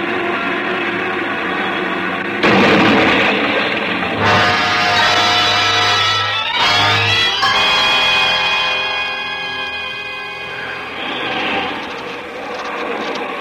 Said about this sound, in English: Suddenly, the plane lurched sharply. There was a loud rushing sound in my ears, and I realized that we were coming down, but fast, much too fast.